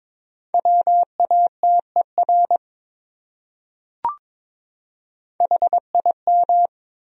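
Morse code beeps at 22 words per minute in a steady mid-pitched tone, a quick run of short and long pulses spelling out one of the top 100 common words, then a brief click, then another burst of keyed tones.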